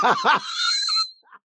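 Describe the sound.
A voice imitates the shrill, comic scream of a banana: two quick squawking bursts rise into a long, high, strained wail that holds steady, then cuts off with a small squeak at the end.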